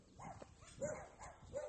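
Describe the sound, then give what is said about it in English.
Tiny chihuahuas bark at a person filming them, in a quick run of three or four high-pitched yaps, fairly faint, with no talking over them. “And now there's tiny chihuahuas barking at me.”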